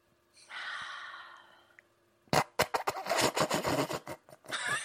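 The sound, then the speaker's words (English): A person sitting and breathing to relax draws a slow, deep breath for over a second, soft, followed after a short pause by louder, choppy breathy rushes of air. “You're just fucking sitting and breathing.”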